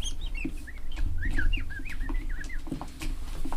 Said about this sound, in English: As this is all going on, you stop and listen to the bird's chirp.